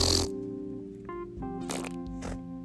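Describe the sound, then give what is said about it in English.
A person makes a wet, sputtering fart noise with their mouth, a few buzzy, squelchy bursts in quick succession, fairly loud with no talking. “Ew, that one sounded wet.”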